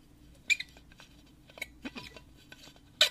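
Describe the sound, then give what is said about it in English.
A plastic water bottle squeaks and creaks, with a handful of sharp squeaky bursts and small clicks spread irregularly over a few seconds against a quiet background. “A water bottle. Oh, that's your water bottle! It's yours! Is it mine? It's yours. I know that squeak anywhere.”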